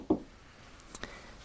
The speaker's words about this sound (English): You do that, and you hear a knocking at the door.